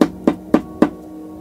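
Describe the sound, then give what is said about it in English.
Four light, evenly spaced taps on a door, each a short hollow knock, isolated against quiet background, with no voices. “Just a light tapping on the door, like it was poking a finger.”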